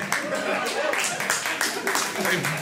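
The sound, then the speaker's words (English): A crowd claps steadily, a dense wash of many hands with a rough, even rhythm at a fairly loud, constant level, with some murmuring mixed in. “I think they're clapping for the change that's happening.”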